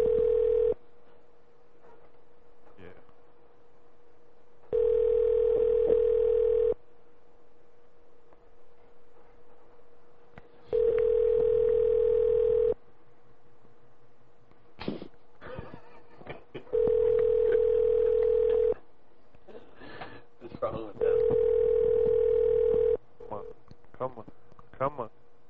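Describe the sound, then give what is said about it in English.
A telephone line ringing tone during a prank call to Club Mutt Grooming Empire's doggy daycare and grooming facility: five long, steady, low-pitched buzzing bursts at even intervals, separated by pauses filled with faint hum, occasional clicks and muffled background noise. “Dr. Lego's about to do a prank call for us, everybody. He will hold on the line.”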